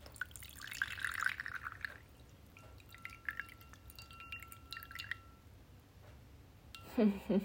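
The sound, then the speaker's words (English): Liquid is poured into a bowl, a final, much smaller serving, in a trickling, splashy stream with small drips, followed by quieter clinks and a short louder splash near the end. “I just poured myself my last bowl and it's much smaller.”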